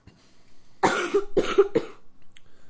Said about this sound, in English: You were out of school being sick, so you have to pardon any coughs that happen. Like this.